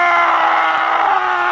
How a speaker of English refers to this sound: It is my final request because I would like to come on and scream on my day off,